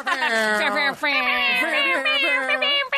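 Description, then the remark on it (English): A guest imitates a cat, drawing out two long, wavering meows back to back with a brief break between them, loud. “You sound like a cat.”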